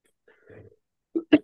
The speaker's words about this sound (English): Oh my goodness. I was really struggling there. I had to cough so badly. I'm so sick. My apologies to everyone listening.